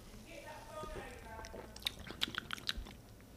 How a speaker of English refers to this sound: So this is rye whiskey, Saint Germain elderflower liqueur, apple juice, and simple syrup, shaken, poured, and topped with either Prosecco or sparkling wine. All right, let's take our first sip. Cheers to the end of summer.